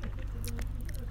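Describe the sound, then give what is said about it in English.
Someone chewing a piece of ginger: soft, wet, irregular munching and squishing with little clicks, steady and quiet over a low hum, with no talking. “Sounds like I'm chewing gum. It's a piece of ginger that I have in my mouth.”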